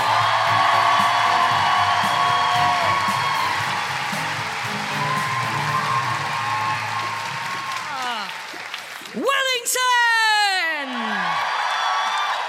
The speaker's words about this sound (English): Give us a cheer if you do listen to the podcast. Give us a cheer if you're enjoying it live. Then keep that cheering going, but make it more like the revolutionary orgy